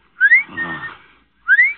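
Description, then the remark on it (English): Two short, bright rising whistles, a voice imitating the chirp of a clock's bird that jumps out to tell the time, the pair separated by a brief pause with a softer murmur in between, fairly loud. “My father had a clock that told the time with a bird jumping out. The bird whistled, like this.”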